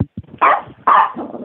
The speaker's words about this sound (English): I hear a puppy. I hear pup.